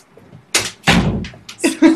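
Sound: door being shut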